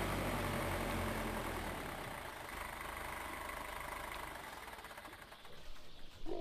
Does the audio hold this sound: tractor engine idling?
yes